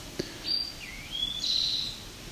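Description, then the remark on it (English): A towhee sings alone: a few short, high whistled notes, one sliding down and one sliding up, then a longer, bright trilled note at the end. The song is moderately loud over faint background hiss. “Could be part of a population of Northern Ontario Tohi that have a sweeter song.”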